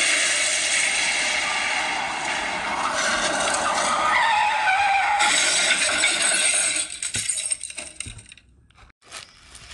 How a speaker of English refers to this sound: Did the bus just crash? My hair trashed, my makeup trashed, my clothes trashed, the bus crashed.